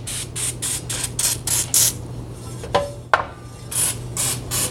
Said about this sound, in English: And we have to spray this down with a little cooking oil. You can use vegetable oil. I just have cooking spray. They want you to do that so you have a nice quick release when taking things off the grill. I'm going to spray it. And spray the top.